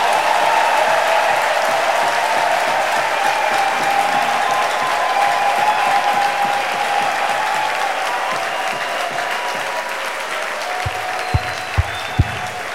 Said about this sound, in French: Qui est d'accord? Alléluia! Amen! Applaudissons alors pour le Seigneur.